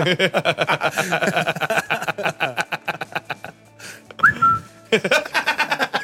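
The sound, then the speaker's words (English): A short slide-whistle glide swoops upward and holds a steady high note, surrounded by bursts of chuckling and laughter before and after it. “I'm kind of with traveling this like the slide whistle.”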